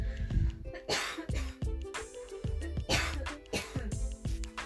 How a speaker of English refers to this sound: No, I do not have the coronavirus, if you heard me coughing. But I was just like choking or something, but I'm okay.